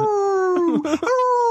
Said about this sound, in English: But what I can tell you is that this little puppy barks like a hound dog.